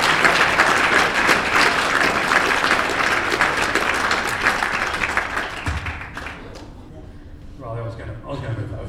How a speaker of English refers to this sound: They've done such a good job of setting up the room, so I'll give them a massive round of applause and welcome them on the stage.